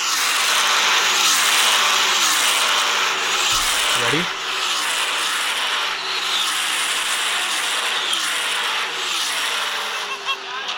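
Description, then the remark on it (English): About twelve Formula One cars scream past one after another during the third lap of a race, in a loud, continuous stream, their high-revving engine notes rising and falling as each car passes. “My favorite sound of this whole race was when there were about, like, 12 cars that went one after the other, like, in the third lap.”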